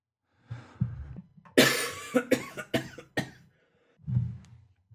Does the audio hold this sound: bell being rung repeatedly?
no